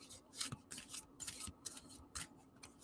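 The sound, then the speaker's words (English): Tarot cards being shuffled: a quick run of crisp, papery swishes and soft slaps in an uneven rhythm, fairly quiet, with no talking. “I like to shuffle a couple times.”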